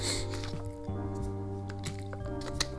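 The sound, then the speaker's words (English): Someone takes a drink of water, with soft squishy, liquid gulping sounds and a few small clicks over a steady low background hum with no talking. “Excuse me. Get my water here.”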